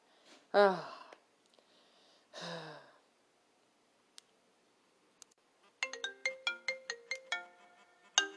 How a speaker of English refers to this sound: Oh, that must be phone.